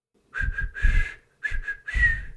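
A person whistles in two short phrases, the thin, wavering tone mixed with a lot of breathy air noise, sounding weak and a bit unsteady.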